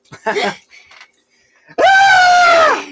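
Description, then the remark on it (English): A person briefly talks, then a voice imitates the piercing, blood-curdling scream of a reported flying creature: one loud, sustained, harmonic shriek lasting over a second before trailing off. “Like this person said that it was a blood curdling scream and angrily flew away.”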